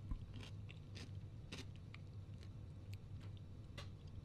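Close-miked crunching as someone bites and chews a crunchy name-brand snack to review it, with a series of sharp, irregular crunches over a low rumbling background and no talking.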